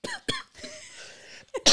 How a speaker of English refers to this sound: Coughing attack. My throat's itching.